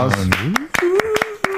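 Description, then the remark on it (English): A short burst of scattered hand claps welcoming guest Barrett Brown onto the show, sharp and fairly loud, spaced irregularly, while a voice hums or cheers underneath in a sliding, then steady, tone. “Big round of applause.”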